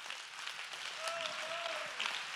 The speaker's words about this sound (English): Can I get somebody to clap your hands and give praise unto God?